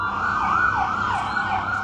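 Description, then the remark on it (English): Ambulance sirens wail loudly, pitch sweeping up and down in steady repeating cycles over a low rumble of road traffic, with no talking, as ambulances converge on the scene of a shooting at a bus stop at the entrance to Jerusalem during morning rush hour. “Ambulances converge on the scene of a shooting at the entrance to Jerusalem.”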